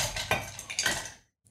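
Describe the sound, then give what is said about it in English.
Ice cubes clatter into copper mugs in a quick burst of bright, ringing clinks, several hard knocks tumbling close together before a short pause and one last faint tap. “Also, I'm going to add some ice. We're using our copper mugs, as you would always use.”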